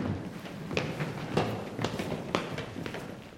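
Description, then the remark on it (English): A series of about five sharp knocks on a door, announcing Lieutenant Mowbray disguised as an old sailor, Varnish in a bear costume and Peter von Brummel; evenly spaced roughly half a second apart, moderately loud over a low, steady background hiss, with no voices. “The knocking at the door announces Lieutenant Mowbray disguised as an old sailor, Varnish dressed in the bear costume, and the real Peter von Brummel.”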